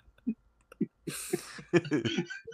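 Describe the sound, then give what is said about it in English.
A voice imitates a man's loud, forceful throat clearing: a few short grunts, then a long raspy hacking rumble with rough bursts, with no talking. “It's more like not blowing his nose, more like clearing his throat.”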